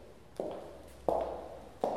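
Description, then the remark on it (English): Three sharp clicks of a woman's heels, evenly spaced in a slow, steady walking rhythm. Each strikes crisply and rings briefly before fading. The steps are moderately quiet and there is no talking. “One of the girls fainted, and nobody dared speak above a whisper until at dawn, the tap, tap noise of her clicking heels died away.”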